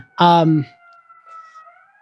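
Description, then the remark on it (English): A brief vocal sound, then a faint siren holding a steady wail that slowly glides in pitch, drifting along quietly in the background. “It's holding for siren. Or? Yeah, sirens.”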